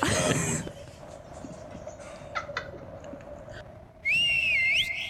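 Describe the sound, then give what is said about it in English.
A single loud, sharp whistle rings out near the end, high-pitched and slightly wavering for under a second, following a burst of noise and a stretch of quiet background murmur. “There's a clear, sharp whistle”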